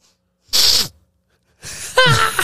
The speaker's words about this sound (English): I can't sniffle. No, you can't sniffle. I cannot sniffle near these microphones. If you need to sniffle, you have to hit the little red button.